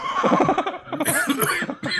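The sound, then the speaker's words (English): A harsh cough bursts out in a couple of rough fits, tangled with voiced, laugh-like sounds over two seconds, fairly loud. “Don't cough.”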